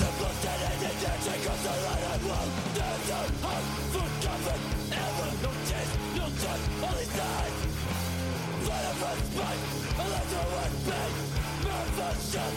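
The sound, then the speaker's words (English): A loud, dense rock song plays throughout, with heavy pounding drums and crashing cymbals driving a steady beat under thick distorted guitars and strained, shouted vocals. “Man, you're going hard on those drums. You're going to break a cymbal or something.”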